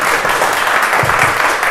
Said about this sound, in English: And yeah, well, big hand of applause for God.